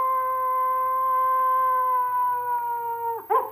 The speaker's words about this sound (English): Did you hear the howl? Howl for what? The howl, because it's the wrap up.